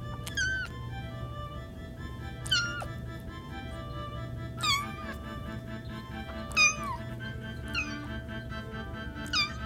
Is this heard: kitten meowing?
yes